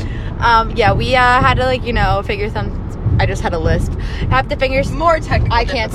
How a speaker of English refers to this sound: Oh, by the way, we're in a car right now. Okay, we're on a little road trip.